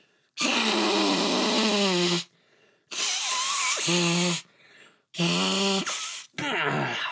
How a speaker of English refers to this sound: All right, well, I'm going to blow my nose, and then we're going to go out on two dummies, and let's go.